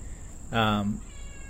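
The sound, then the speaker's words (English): A cat gives a single short meow, fairly clear, lasting about half a second over a quiet background with a faint steady high-pitched whine. “Yes, Kitty.”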